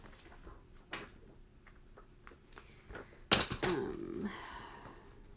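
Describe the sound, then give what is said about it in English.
A little "nice list" sticker being pressed onto gift wrap: a few light, scattered ticks, then a sudden sharp crackle followed by crinkly paper rustling that trails off. No one speaks. “I'm gonna put this little nice list sticker on here.”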